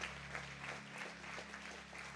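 Steady audience applause for children after their performance of the birth of Jesus, a dense continuous patter of many hands clapping at an even loudness with no voices standing out, over a low constant hum.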